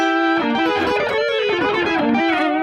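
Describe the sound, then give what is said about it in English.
Electric guitar played through a harmonizer pedal and a Kemper modeling a Soldano SLO 100 amp, with a little reverb; sustained notes layered with shifted pitches into a thick, slightly strange wash of tone, loud, with no talking. “with the whole harmonizer thing. Get like a little weird on that.”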